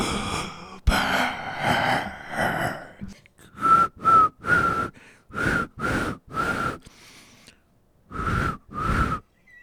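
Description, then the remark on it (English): Someone whistles a short tune in separate, breathy notes with brief pauses between them, fairly loud, after a few seconds of dense, noisy sound at the start. “Coopers, they'll make you whistle as good as I do.”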